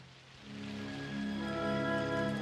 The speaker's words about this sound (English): And this rain doesn't help. But they'll get soaked. So will we.